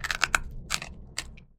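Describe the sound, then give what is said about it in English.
Crisp crunching of Bada Bean Bada Boom crunchy bean snacks: a quick cluster of sharp bites followed by a few slower, separate crunches, fairly loud with no talking. “All with a crunch that rivals potato chips. Seriously, listen for yourselves.”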